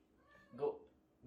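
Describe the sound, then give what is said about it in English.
A cat gives one short, drawn-out meow that swells and fades within half a second, clear against a faint background murmur. “A lot of distractions as I'm talking about lowering distractions.”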